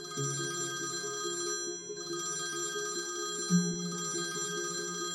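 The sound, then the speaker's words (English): A phone alarm ringtone rings steadily, a repeating electronic melody of bright tones over a low pulsing pattern, continuing without pause and with no one speaking. “I reach over to slap the phone silent, but it keeps ringing.”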